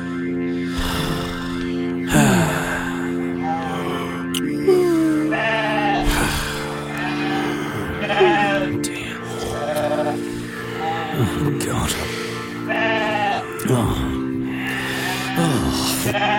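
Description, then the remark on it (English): A sheep bleats again and again, around nine wavering, quavering calls spaced every couple of seconds, over a steady low humming drone that runs underneath the whole time. “Time starts to pass, but still that sheep keeps going.”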